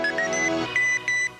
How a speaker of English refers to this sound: She did this incredibly catchy and almost kind of cute commercial with electronic sounds in it, as if the dishwasher was, you know, R2-D2 who was talking to you with beeps.